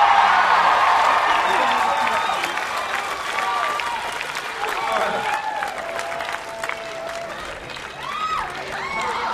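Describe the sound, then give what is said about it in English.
A large crowd at the Newport Folk Festival claps steadily and cheers for more from the band on stage, with whoops and shouts rising over dense, continuous applause that stays loud throughout, easing only slightly toward the end. “We may hear more. I think we might. If it's up to the crowd, we are, right?”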